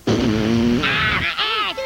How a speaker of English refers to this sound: Damn, Cartman! Dude, he's farting fire! It's the alien anal probe! It's shooting fire from Cartman's rectum!